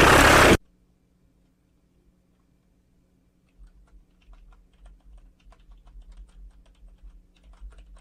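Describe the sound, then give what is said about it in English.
Light, irregular tapping and tinking by a man on a hard object, a quick run of soft clicks over a low rumble, following a brief loud burst of noise at the start. No one speaks. “Oh, he's tapping. You hear it? He's tinking.”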